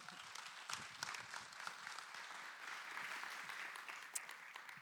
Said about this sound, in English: warm round of applause.